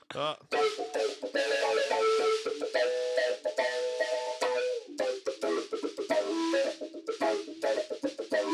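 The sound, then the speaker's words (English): A guitar plays a funky chicken-scratch rhythm from one of the band's own songs, ringing melodic notes broken up by quick, choppy muted strums, loud and steady with no voices over it. “So you're kind of hearing how I'm hitting some of those notes, but there's a lot of chugs in between. Doing the chicken scratch.”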